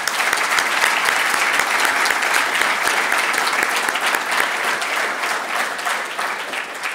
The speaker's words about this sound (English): I think we owe these people a debt of gratitude for what they do for us, and please, another round of applause for them.